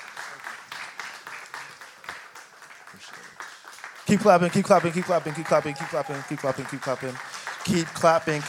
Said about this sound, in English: Keep clapping. Thank you so much.